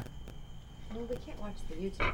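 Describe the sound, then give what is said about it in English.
A person imitates a dog's bark while inhaling, producing a few short, strained voiced yelps in quick succession over a faint steady background hum. “I don't think I can inhale bark. That's an inhale.”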